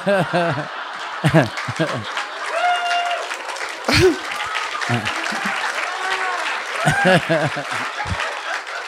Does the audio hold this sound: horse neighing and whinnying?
no